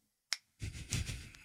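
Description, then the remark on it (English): A single crisp finger snap cracks out as a man clicks his fingers, then a rough, steady wash of noise rises and carries on until the end. “Big Caramac digits come and pull this earplug out of my ear, and he puts it in his ear and he starts clicking his fingers.”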